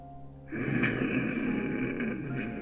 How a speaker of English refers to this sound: There it is. Yeah. Your dainty lady snores like a pirate. Yep. It's adorable. Not even just when drunk, just in general. She snores like a fucking pirate. It's adorable to see, like, this 5'2", little petite... 105 pounds.